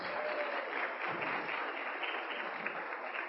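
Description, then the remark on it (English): A crowd applauds the nursery class steadily, many hands clapping in a dense, even wash of sound that holds at a constant loudness for a few seconds without voices. “Let's give the nursery another round of applause.”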